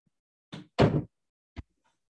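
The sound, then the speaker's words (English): A door is pushed closed with a solid thud, preceded by a brief scrape of movement and followed a moment later by a short click of the latch. “And then shut the door.”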